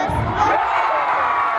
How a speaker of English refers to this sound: The crowd roars